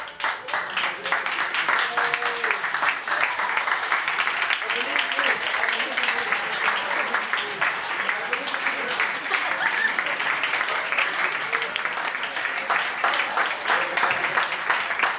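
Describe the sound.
An audience applauds steadily for about fifteen seconds, a dense, even wash of many hands clapping at once, with faint murmured voices mixed underneath; the men are applauding the women and girls, who are standing.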